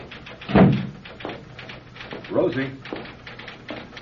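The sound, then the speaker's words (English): An office door opens with a solid thud and latch clunk, followed by quieter shuffling and a brief murmur of voices in the room, as author Nat Post enters his outer office where his secretary is transcribing, in the radio drama Crisis, 'The Man Who Could Fly'. “When the door opens, and Nat comes in.”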